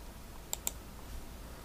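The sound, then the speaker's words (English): Two crisp keyboard clicks in quick succession, then a faint third a moment later, like light typing on a computer keyboard as a search is typed into Google, against a quiet, steady background. “she's typing into Google, what did Dave Arneson do that wasn't D&D?”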